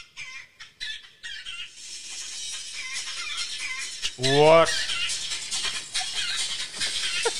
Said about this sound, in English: This is someone's alarm in the hostel room at 6 a.m.